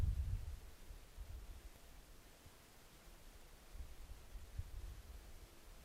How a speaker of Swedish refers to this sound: Och det är bara vinden som hörs just nu. När havet inte brusar fritt.